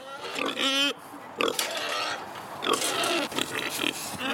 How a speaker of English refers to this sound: So we're down the parlour, and you have two Jersey cows.